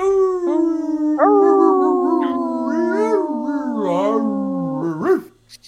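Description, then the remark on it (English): A wolf howls in one long, unbroken cry that wavers and bends in pitch, loud, before breaking off abruptly near the end. “Wolf.”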